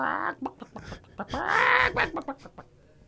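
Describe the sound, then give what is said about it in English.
A person's voice mimics a chicken, making a series of short, clucking bawks around one longer, drawn-out squawk, loud. “The Chick 2000. just bawk, bawk.”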